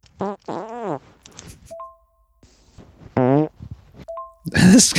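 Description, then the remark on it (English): A string of NFT fart recordings plays in quick succession, some squeaky and tonal, others wet and sputtering, interspersed with short electronic chime-like pings and a loud flappy burst at the end. “We will get the definitive fan favorite Ian Dixon take on NFT farts eventually.”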